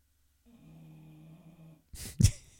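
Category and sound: animal, dog snoring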